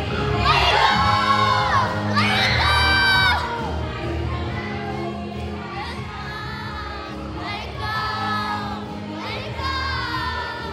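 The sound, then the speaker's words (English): A crowd of children at a camp party cheers and shouts together, with high excited whoops and yells rising in bursts over a steady roar of many voices, loud throughout. “All right, camp, we're supposed to make some noise.”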